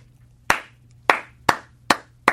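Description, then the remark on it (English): A single person does a slow clap, called the Brubaker clap: five sharp, evenly spaced claps with a brief ring after each, fairly loud over a faint low hum. “They call it the Brubaker clap, where one person claps.”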